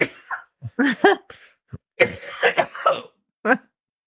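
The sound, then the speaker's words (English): A loud fit of coughing from too much pepper: several harsh, sputtering coughs in uneven bursts, some voiced and strained, with a throat-clearing rasp between them and brief pauses. “Good thing I hooked up that cough button over there.”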